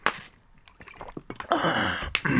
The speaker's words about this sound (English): let me drink this water.